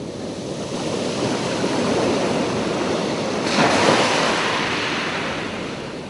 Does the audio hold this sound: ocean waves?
yes